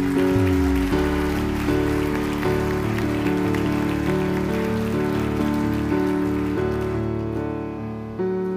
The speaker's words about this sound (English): Give Jesus a big round of applause for that.